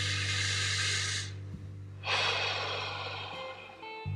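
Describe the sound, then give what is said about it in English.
Two slow, airy breaths, a long inhale followed after a short pause by a long exhale, over a steady low hum with no talking. “Take a moment right now and just breathe in and out.”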